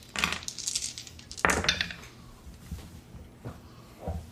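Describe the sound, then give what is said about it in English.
Several dice are rolled for a perception check in a game, clattering and tumbling across a hard surface in quick bursts, a sharp rattle followed by a few lighter clicks as they settle, fairly clear with no talking. “Go ahead and make an average perception check. Hit that dice game.”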